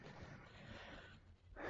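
A dog named Ludo sniffs and snuffles while nibbling at weeds in the bottom of a greenhouse, a continuous stream of quick, breathy nasal puffs that swell into a louder snort at the end, with no one speaking.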